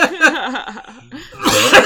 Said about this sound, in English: Oh, he was just that was a fuck you cough.